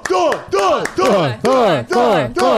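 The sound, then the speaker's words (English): A single voice imitates a wildly cheering crowd, letting out five loud, rhythmic whooping cries in quick succession, each rising and falling in pitch, energetic. “Wow, the crowd goes wild.”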